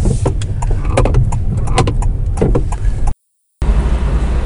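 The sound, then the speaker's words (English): A steady low engine rumble from inside a moving hybrid car with children aboard, with scattered clicks and rattles over the drone and a brief moment of complete silence near the end. “I'm in the car with the kids.”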